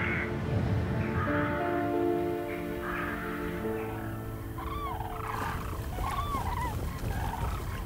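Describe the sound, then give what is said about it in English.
A flock of common cranes, gathering in a valley to begin their long migration south, calls in overlapping, repeated trumpeting bugles, rising and falling in pitch, over a steady low droning hum with no voices. “The eerie calls of the common crane echo through the valley as they gather to begin their long migration south.”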